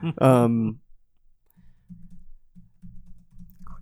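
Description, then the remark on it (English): A short voiced sound opens, then a run of quick, soft keyboard taps clatters in irregular bursts, typing steadily for a few seconds with brief pauses between flurries. “I know you're going to hear the keys.”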